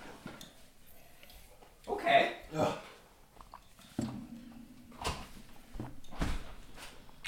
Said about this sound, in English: Open the door.